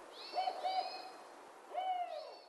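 A spotted owl hoots in a short series, two quick notes, a brief pause, then a final drawn-out hoot. The calls are clear, moderately loud and stand alone with no talking.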